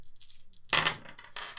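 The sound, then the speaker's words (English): Dice rolled for armor in a tabletop role-playing game rattle briefly, then spill onto a hard table with a sharp clatter and a few skittering bounces that settle quickly, with no one talking. “You get to roll your armor. All the 6s.”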